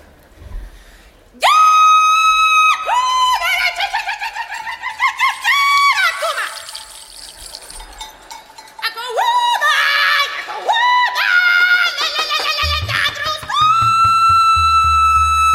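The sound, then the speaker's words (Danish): A Norwegian cow-herding call sung by a solo voice: loud, high, piercing held notes that swoop up and down in a string of echoing phrases, with no accompaniment. “But in the particular region of Norway where I'm from, the cows are bigger and the maidens are too. And so our cow call isn't quite as elegant.”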